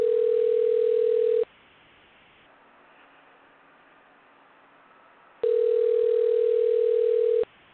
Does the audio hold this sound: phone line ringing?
yes